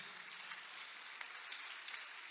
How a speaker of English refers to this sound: Oh, your clapping is weak.